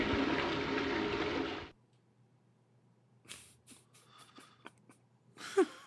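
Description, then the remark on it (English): A toilet flush: a loud rush of water for about a second and a half that cuts off abruptly, leaving a low hum and a few scattered clicks and small clatters. “Go ahead and hit the flush button for me, dollface.”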